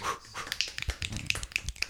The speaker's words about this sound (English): Why are you clapping? It's so aggressive.